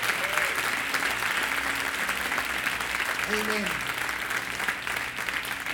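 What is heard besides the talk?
audience applauding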